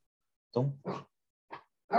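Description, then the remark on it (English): A dog in a kennel gives four short, gruff woofs or grunts in an uneven pattern, two close together, then a pause before two more. Moderately loud, with no one talking over them. “Oh, dog's going.”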